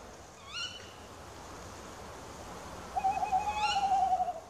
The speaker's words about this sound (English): but yeah, they're definitely, I think, the owl that you're most likely to hear at night. And of course, they've got that typical twit-to-woo sound, which everybody associates with owls, and they're actually the only species that does make that sound.